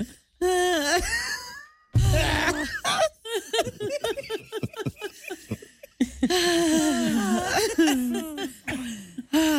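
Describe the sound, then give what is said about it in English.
Loud, heavy breathing into a microphone: long voiced, groaning exhales alternate with a run of quick, rhythmic panting bursts, then more drawn-out, strained breaths. No words are spoken. “That's just a lot of breathing on my part.”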